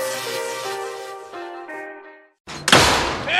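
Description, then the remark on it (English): A sustained ringing tone fades into a brief silence, then a loud door slam bursts out with a heavy thud and a short rattling tail. “You kids quit slamming my goddamn door!”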